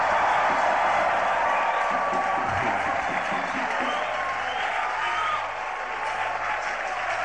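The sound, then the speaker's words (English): A large crowd claps steadily and loudly for several seconds with scattered shouts and voices, giving the Lord a shout and clap offering; the dense applause holds at an even level throughout. “Give the Lord a shout and a clap offering.”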